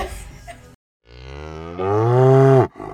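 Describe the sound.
A person imitates a cow, letting out a long, loud, drawn-out moo that swells in strength before cutting off, preceded by a brief burst of noise and a short pause.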